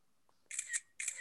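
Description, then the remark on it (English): Two crisp phone camera shutter clicks in quick succession as a picture is taken with VoiceOver turned on, each a bright, hissy burst lasting about a quarter second, with a short gap between them and no talking. “Okay, so that's the clicking that he's talking about.”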